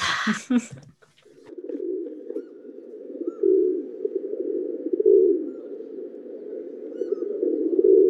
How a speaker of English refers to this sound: Rock pigeon is the bird.